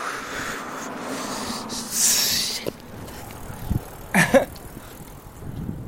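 Bicycles rolling along as riders head to a trailer at the campgrounds, with a steady whooshing road noise, a brief hissing burst partway through and a short squeaky rattle near the end. No one speaks.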